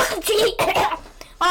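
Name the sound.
coughing fit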